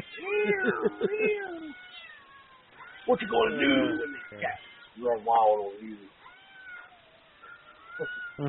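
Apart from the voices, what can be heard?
cat meowing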